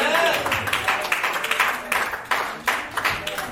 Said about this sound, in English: you help me honor God for our bishop today? Amen. Amen. And why you clap and celebrate God